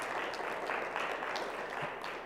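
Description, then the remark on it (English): A church audience gives its pastor a round of applause one morning: dense, steady clapping from many hands that holds at an even loudness for a couple of seconds, with no one speaking over it. “Go ahead and give him a round of applause and let him feel your love this morning.”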